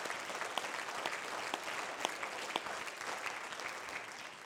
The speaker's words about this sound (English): Oh, clap your hands unto the Lord. Right now.